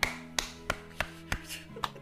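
Six sharp hand claps land in a steady, even rhythm, about three per second, each a crisp snap over a faint, constant low hum.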